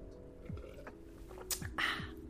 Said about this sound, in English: I need to have a sip of water on that.